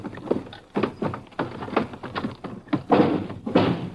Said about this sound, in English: Okay, open the door.